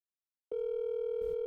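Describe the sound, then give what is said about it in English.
After half a second of silence, a steady electronic outgoing phone ringing tone comes on and holds, loud, while a call is placed to a man, with a brief muffled bump of handling noise near the end. “Let's see, is this ringing?”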